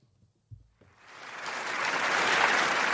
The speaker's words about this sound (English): Have I overused the applause sound effect this week?